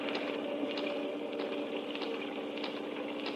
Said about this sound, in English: This rain seems to be getting worse.